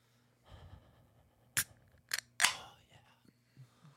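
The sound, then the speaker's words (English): A drink can is opened: two sharp metallic clicks, then a louder crack followed by a short fizzing hiss that quickly fades. A low hum and soft rustling sit underneath. “But how about we open it for all you Asmars out there?”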